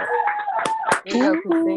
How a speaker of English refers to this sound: And y'all unmute your mics and clap for her, please. I appreciate it.